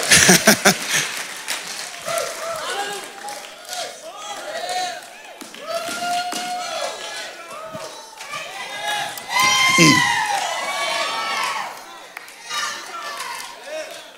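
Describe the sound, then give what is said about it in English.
A crowd shouts, whoops and cheers together with scattered clapping, voices overlapping loudly and continuously, swelling to a peak near the end before easing slightly. “I saved folks shouting in this house.”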